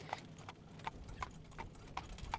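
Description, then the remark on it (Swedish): Hooves of horses pulling a carriage through a forest clip-clop on hard ground in a steady, even rhythm, about seven sharp knocks over a couple of seconds, heard alone at a moderate level with no talking. “Flera personer ska också ha sett en vagn som körs fram av hästar och hört ljudet av klapprade hovar mot marken.”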